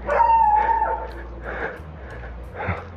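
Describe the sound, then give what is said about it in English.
A small pug dog yaps and whines in a few short, high bursts spread over a few seconds over a steady low outdoor rumble, as someone walks past it. “So the microphone's further away from the noise of his barking.”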